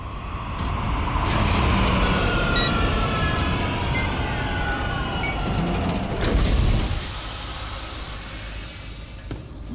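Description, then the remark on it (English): A flying police car banks and descends to land at street level near crime tape, with a heavy engine rumble and gliding, whining tones, then lands with a loud hissing release before settling into a lower idling hum. No voices. “The alley passes under the spinner as it banks to land near the crime tape around the snake pit.”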